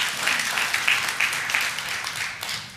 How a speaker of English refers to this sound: And she actually, I appreciate you applauding that.